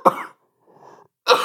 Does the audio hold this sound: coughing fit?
yes